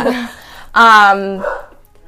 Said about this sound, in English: Sorry, I just got the dog going, because I knocked on wood.